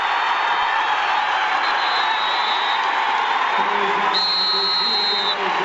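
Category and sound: crowd, basketball arena crowd cheering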